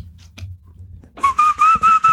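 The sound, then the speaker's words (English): Someone whistles a short tune: four or five clear, sustained notes in quick succession, fairly loud, after about a second of faint background rustling. “I mean, you should have just whistled the intro song for us.”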